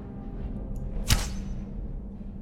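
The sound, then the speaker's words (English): A single video game arrow is loosed at a spider with a sharp, airy whoosh and a quick thud, standing out clearly over a low, steady background rumble. “When you shoot a perfectly good arrow and then they just sidestep it.”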